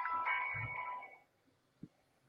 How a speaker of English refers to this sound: Phone just randomly started playing something while it's next to me. Weird times.